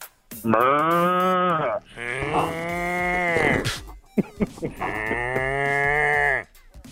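A cow in Iowa, kept right out in front of the caller's place, moos three times in long, loud, drawn-out calls, each a rich harmonic bellow lasting over a second, separated by brief pauses with faint background noise.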